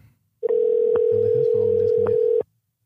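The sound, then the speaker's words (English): A steady telephone dial tone hums loud for about two seconds after the insurance company cuts off the call, with a few faint clicks underneath, then cuts off abruptly. No one speaks. “Man, the insurance company cut me off.”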